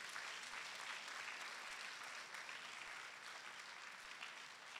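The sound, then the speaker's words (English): A crowd claps for the living God, dense overlapping hand claps forming a continuous, fairly loud wash of applause that holds at an even level throughout, with no voices standing out. “Can you clap for the living God?”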